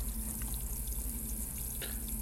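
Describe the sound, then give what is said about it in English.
Kombucha gushes steadily from a held-down tap in a cafe and splashes onto a hard floor, a continuous rushing pour with faint dribbling spatters, with a low hum beneath and no voices. “And they go over to the kombucha tap, and they just hold down the tap. And this vinegary smell fills the cafe as kombucha just pours onto the floor.”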